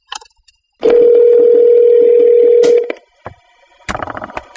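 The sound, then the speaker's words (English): A phone call is cut off: a few faint clicks, then a loud, steady telephone dial tone hums for about two seconds before stopping, followed by scattered clicks and brief clattering handset noise. “We were cut off.”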